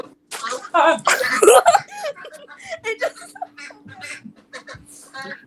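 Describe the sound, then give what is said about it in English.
A pet bird or chicken vocalizes, starting with a loud, raspy squawking burst, then a run of short, choppy calls and chirps over a faint steady hum. “Maybe this is a mistake because they're all like making noises.”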